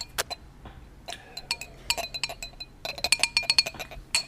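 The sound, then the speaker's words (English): A series of bright, ringing clinks on a drinking glass holding a drink, tapped in irregular short and long groupings as Morse code, with brief pauses between bursts and no voices. “I just said it in Morse code through my drink.”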